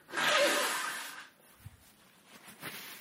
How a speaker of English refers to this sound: Hang on, I gotta blow my nose. I apologize.